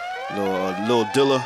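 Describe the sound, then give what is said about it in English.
A DJ-style 'Dilla horn' air horn sound effect blares in three loud, brassy blasts, a long one followed by two shorter ones, with buzzy harmonic tones and a slight pitch shift between blasts. “Let me get a quick little air horn.”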